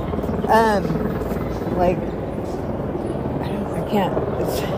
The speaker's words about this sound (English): Okay, this is really loud. It's not LAPD. Oh, what kind of helicopter that is? It's white.